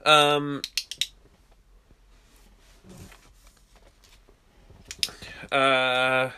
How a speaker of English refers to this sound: there I go. Clicking my pen and forgetting my thoughts.